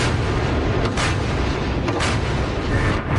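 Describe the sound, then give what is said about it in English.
Heavy naval gunfire from Baltic Fleet warships in an exercise, firing at targets imitating enemy ships, booms out in a dense, continuous roar, with sharper blasts surfacing around the first and second seconds over a constant low rumble; no one speaks. “press office released video of ship crews performing tasks aimed at repelling air attacks of a simulated enemy and firing at targets imitating enemy ships and coastal artillery.”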